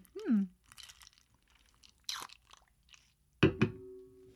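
Someone takes a sip of a drink they made: a few short slurps and wet swallowing sounds, ending in a louder clattering burst with a brief ringing tone.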